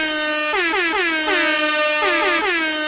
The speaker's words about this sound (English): Okay, so this is the part where the reggaeton air horns need to go for my introduction. They've been going. They're going. Yeah, ongoing.